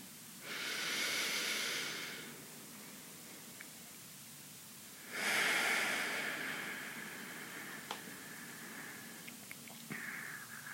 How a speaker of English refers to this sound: Let's breathe in and know that we're breathing in for 3. Deep belly breaths and breathe out for 6. Know you're breathing out.